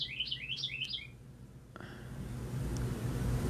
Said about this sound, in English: I think the bird wants to say something. What is he saying? Can anybody understand? Where is that bird? He wants to come inside? Does anyone know what birds say?